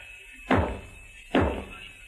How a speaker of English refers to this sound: You crazy. What are you banging on the wall for?